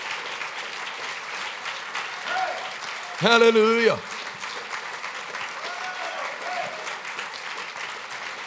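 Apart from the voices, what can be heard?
audience clapping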